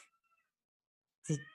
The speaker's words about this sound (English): Can you hear that? Yeah, very barely. So yeah, don't worry about it. Anyway, the cat's just screaming and singing, whatever.